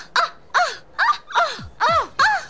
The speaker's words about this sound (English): I remember that being on the commercial. They sampled all the same screams.